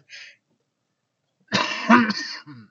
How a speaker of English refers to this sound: I'm getting over a sinus infection, so I might be coughing here and there. I don't know if we'll be able to edit that out or not, but I'll do my best to keep it down.